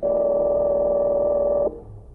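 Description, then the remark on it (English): A steady, loud telephone tone hums for about a second and a half as the number of a hotel room is dialed, then cuts off abruptly, leaving faint line noise. “I have the number of Fenders' hotel room. Perhaps I can catch him there now.”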